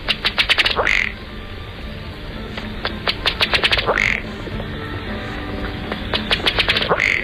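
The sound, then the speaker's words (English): A male ruddy duck's breeding-season call, heard three times: a quick run of dry, accelerating ticks ending in a short croaking belch, like a small outboard motor sputtering as it tries to start. It is clear, with no voices. “The ruddy duck is generally quiet, except in breeding season, when you'll hear this small outboard motor trying to start up sound from the male.”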